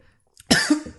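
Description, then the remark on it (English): A close, loud cough bursts out after a brief silence, a harsh throaty rasp lasting about half a second, followed by the start of another cough right at the end. “Don't worry, I'll cut this out when I'm coughing.”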